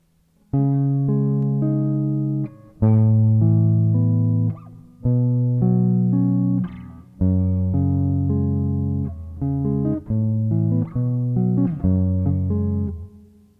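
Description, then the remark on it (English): A guitar strums a sequence of ringing suspended second chords, C sharp, A, B and F sharp, each held for a couple of seconds before shifting, with the changes coming quicker toward the end; steady and fairly loud, no voices. “The chords he uses are all suspended seconds, C sharp, A, B, and F sharp.”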